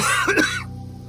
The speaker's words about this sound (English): He spent a good minute coughing and trying to catch his breath before he could finish his thought.